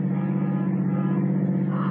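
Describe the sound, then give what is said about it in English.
A car engine drones steadily as the vehicle drives along, an even low hum with road rumble that holds constant for the whole moment, with no voices. “Stop the car.”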